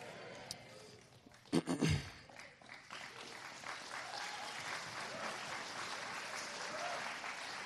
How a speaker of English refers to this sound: No, don't give me a sympathy clap. It's like, okay, yeah. Sure, we'll give it to him.